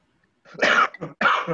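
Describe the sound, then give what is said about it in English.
Two harsh coughs in quick succession, the first longer and raspy with a short catch between them, the second a strong burst trailing off, with no talking. “Hey, keep that Corona to yourself over there.”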